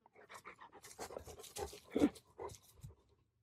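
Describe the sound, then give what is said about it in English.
A dog named Max (Aurelius Maximus) pants, quick rhythmic breaths puffing in and out for a few seconds, with no one speaking over it. “I know he knows I'm talking to him.”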